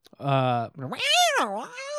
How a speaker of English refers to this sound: No, I'm saying like it sounds like cats having sex out there. You know what I mean?